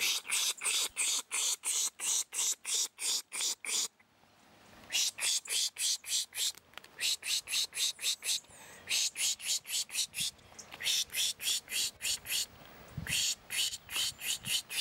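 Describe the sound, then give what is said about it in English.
Rapid, rhythmic bursts of high-pitched hissing 'pish' mouth noises, repeated in quick series with brief pauses between runs: a person pishing, mimicking by mouth the sounds birds use to signal danger, to lure birds in dense habitat into the open. “Pishing or spishing is hissing, sucking, or squeaking noises made with one's mouth to mimic the sounds that birds use to signal when danger threatens.”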